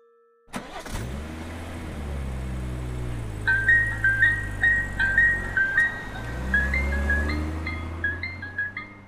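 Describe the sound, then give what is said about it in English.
An ice cream truck's engine starts and idles with a low rumble while parked in an empty lot by an abandoned railroad track, then its tinkling jingle melody plays over the running engine, fairly loud. “Mr. Sweets parked the ice cream truck in an empty lot”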